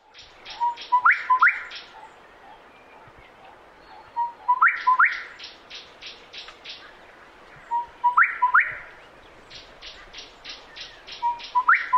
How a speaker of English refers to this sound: This is quite a colorful bird, the gorgeous bushshrike.